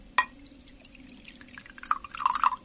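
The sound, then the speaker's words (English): A light glass clink, then after a pause a short trickling pour of bicarbonate of soda dissolved in water, tipped into a glass, with bright bubbly splashes lasting under a second. No talking. “I swirl that round a bit and tip that into the glass.”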